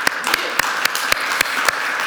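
A small group claps together, a soft patter of hands underneath with a few sharper claps landing in a steady rhythm about four times a second, moderately loud and with no talking.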